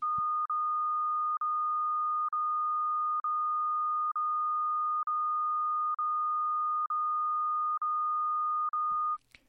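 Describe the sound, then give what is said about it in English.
A steady pure tone held at one pitch, broken by brief silent gaps at regular intervals of about a second, with a faint click at each break and a short noise at the end. “This sound is a steady frequency, but with gaps of silence inserted.”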